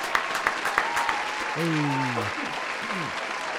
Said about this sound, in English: Let's get into the show, man. A round of applause. I want to make sure that we honor our guests.